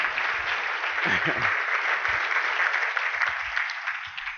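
An audience applauds steadily for a newly introduced staff member, a dense wash of clapping that holds at an even, fairly loud level for several seconds, with faint murmurs of voices underneath.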